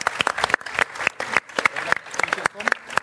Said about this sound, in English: Thank you very much. Round of applause for our guests.